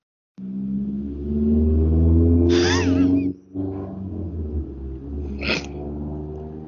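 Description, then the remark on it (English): A small motorcycle engine runs, its low throaty drone holding steady with a couple of brief higher-pitched revs and a short dip midway. “A little motorcycle sounds like.”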